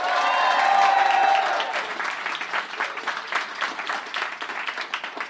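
audience round of applause

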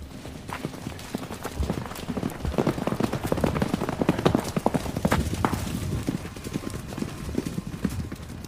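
horses galloping away

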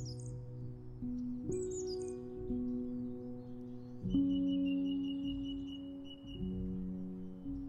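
song thrush singing

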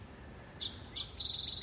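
birds chirping

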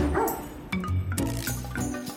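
dog barking

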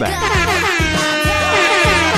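air horn sound effect

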